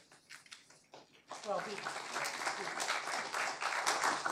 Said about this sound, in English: I'm going to steal some of his applause.